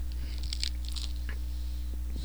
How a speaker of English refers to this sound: could you crunch that pizza anymore? No. I'm gonna just have to edit this thing so much. Stop.